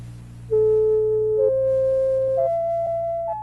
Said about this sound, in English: The Vidlotoner is a reading machine for the blind. There are 9 tones in its output. Here they are, first one by one, then all together.